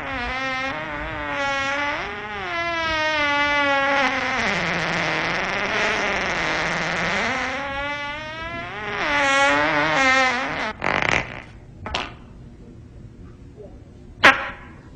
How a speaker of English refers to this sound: I don't know. I can taste it on my tongue. Okay, I'll be honest with you. I did fart. Is that onion? Onion and ketchup.